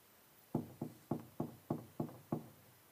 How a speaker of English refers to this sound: And he knocks. He knocks.